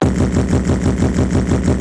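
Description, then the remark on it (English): A voice imitates an extremely fast, relentless 1,000 BPM beat, a loud, steady, rapid pulsing buzz that sounds like an idling tractor engine, continuous for about two seconds. “That's 1,000 BPM. It's horrible. It's barely music. Yeah. It's kind of like a tractor engine.”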